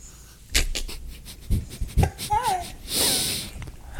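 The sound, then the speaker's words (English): Sniffing, as if someone is smelling a drink: a few short clicks and bumps, a brief murmured vocal sound, then one longer, airy inhale through the nose. “All right, let's give her a little sniffy sniff.”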